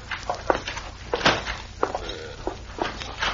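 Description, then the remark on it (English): A series of footsteps of a man coming in through the back door, about six or seven firm thuds at an uneven walking pace, moderately loud over a steady low hum, with no one speaking. “Here he is now, coming in the back door.”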